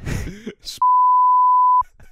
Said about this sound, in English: I like when it's beeped and I have to guess what I've said.